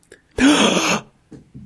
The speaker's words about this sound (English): Thank you for the gasp. There you go, I gave it for you, go for it.